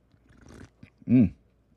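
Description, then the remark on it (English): A quick airy slurp of hot green tea with honey and lime from a ceramic coffee mug, followed by a short, loud voiced "ahh" of satisfaction, otherwise quiet. “And of course, as usual, we got to take a sip.”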